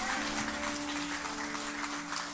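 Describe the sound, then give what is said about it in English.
A crowd claps hands steadily throughout in the morning, a dense, continuous wash of many clappers, with a faint sustained tone humming underneath. “Come on, give him a hand clap in here this morning.”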